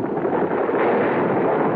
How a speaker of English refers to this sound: I struggled to stay where I was, and my feet dislodged a shower of stones.